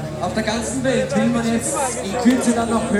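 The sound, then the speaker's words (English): Steady crowd chatter, a dense babble of many overlapping voices at a constant moderate level with no single speaker standing out, as spectators gather at a race finish. “Still a big crowd, everyone's trying to get to the finish to look.”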